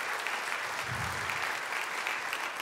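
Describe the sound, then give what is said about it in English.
A crowd claps steadily in sustained applause for the search committee, a dense, even patter of many hands that holds at a constant loudness throughout with no voices rising above it. “Let's give them a round of applause for sure.”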